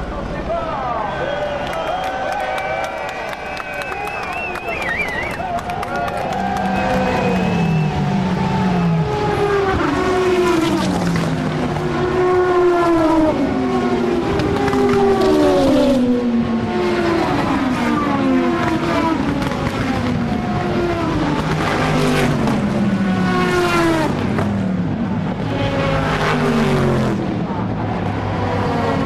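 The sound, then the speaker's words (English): About 55 race cars roar off together at the start of a race on the start-finish straight, engines revving hard and sweeping up and down in pitch as they pass, over loud, continuous cheering from about 250,000 spectators. “You're about to hear 55 cars all at the same time. And about 250,000 people cheering.”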